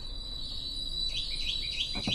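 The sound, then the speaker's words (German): Several quick, high bird chirps arrive in the second half, layered over a steady thin insect-like drone and soft background hiss, not loud. “Und die Vögel.”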